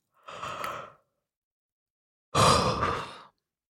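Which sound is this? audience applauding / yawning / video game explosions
yawning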